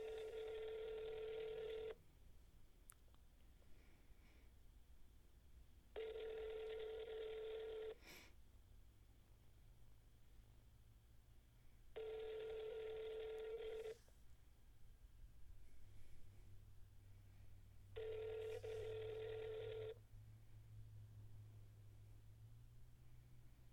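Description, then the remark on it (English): A phone ringback tone sounds four times over speakerphone while calling an Arby's restaurant, each two-second burst followed by a roughly four-second pause, with faint background hum and no talking. “Man, it's ringing a long time, huh?”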